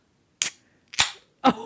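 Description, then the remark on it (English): A drink can is cracked open: three sharp, bright pops, each followed by a short fizzy hiss, the last carrying a brief metallic ring. No voices. “Oh, you could just gonna crack one open.”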